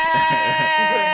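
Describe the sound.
A voice imitates a strangled, high-pitched scream that won't come out: a thin, strained, steady tone held for about a second with a bleating, choked quality, fairly loud, with no words.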